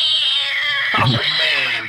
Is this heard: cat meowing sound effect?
yes